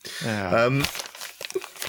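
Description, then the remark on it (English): A short voiced sound is followed by crackly rustling of brown paper wrapping, a series of irregular crinkles and scrunches as a small, thin package about the size of a double cassette box is handled. “And if you shake it, you can hear a bit of a rattle. I've wrapped it in brown paper,”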